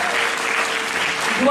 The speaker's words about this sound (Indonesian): Berikan dulu tepuk tangan bagi Tuhan Yesus.